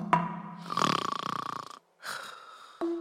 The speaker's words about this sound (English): As Elephant, Gazelle, and Zebra watched Rhino snoring away, it suddenly dawned on them why he was so hale and hearty.